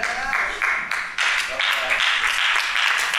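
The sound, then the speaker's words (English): An audience applauds in a steady, dense wash of clapping that holds at a fairly even loudness for about three seconds, with no clear voices standing out. “Some people can't clap, but that's fine because I can understand.”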